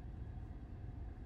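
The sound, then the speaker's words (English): A steady low engine rumble from inside a moving car, a continuous droning hum heavy in the bass with no voices, as if cruising along in traffic. “So, the traffic is moving though.”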